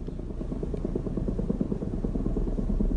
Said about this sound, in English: Late this summer and then throughout the fall, residents of Telluride have noticed a periodic buzz in the skies above town. That buzz was coming from helicopters sent out by the federal government to take a bird's-eye look at the minerals below Earth